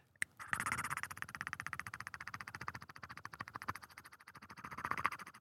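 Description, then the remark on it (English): A voice imitates the gurgling a horseshoe crab on the beach makes when flipped over, water going back through it: a wet, bubbly gurgle, a fast steady train of rattling pulses lasting several seconds, swelling louder at the start and again near the end. “And whenever you flip them over, they made this gurgling sound of the water sort of going back through there.”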